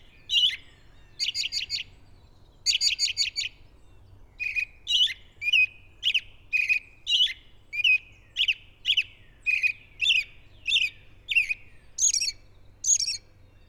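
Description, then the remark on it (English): An American robin, just landed overhead in a forest, sings a long series of clear, repeated chirping phrases in a steady rhythm, loud, with faint low background hum and no talking. “Wow, he's singing up quite a storm.”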